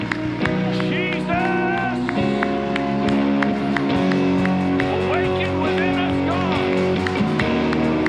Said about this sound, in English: Come on, if you agree Jesus is Lord, why don't you shout amen and give Him a hand clap of praise? He is Lord.